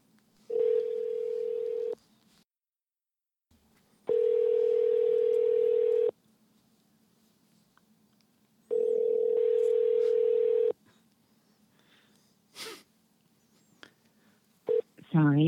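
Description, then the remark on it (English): A telephone dial tone hums in three long, steady bursts separated by short pauses, followed by a few quick keypad beeps and clicks near the end as a random phone number is dialed, fairly loud. “We're sitting at some random phone numbers.”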